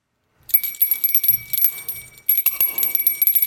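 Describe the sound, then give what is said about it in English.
A bright bell rings in two shaking bursts, its metallic jingle shimmering with sustained high overtones, fairly loud with no voices. “Every time a bell rings, we give our... Top 5!”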